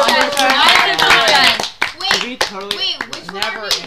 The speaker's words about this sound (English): All right, I think that's a wrap. I think we can give ourselves a round of applause.